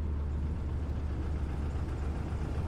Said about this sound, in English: Oh shit, the bus is here.